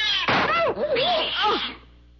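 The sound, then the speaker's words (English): A cat attacks with harsh, snarling yowls: a noisy burst at the start, then loud wavering screeches that sweep up and down in pitch for about two seconds before cutting off. “That cat was mad. It was attacking.”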